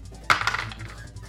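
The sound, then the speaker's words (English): Two dice are rolled on a table: a sharp clatter of them hitting the surface, followed by about a second of quick, rattling tumbles that fade out. The sound is fairly loud, with no voices. “I'm rolling two dice about it.”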